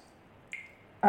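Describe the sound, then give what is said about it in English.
A single water drop plinks once with a short, ringing tone in an otherwise quiet space, and then a voice starts to speak right at the end. “I wish that damn dripping would stop.”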